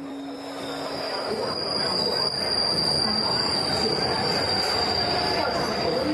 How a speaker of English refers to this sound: The Shanghai metro carries 10 million people a day. That's more than double the population of New Zealand and a reminder of the sheer scale of things in China.